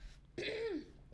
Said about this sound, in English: Excuse me. Someone a little nervous? You rehearse this? I have to clear my throat to get my best.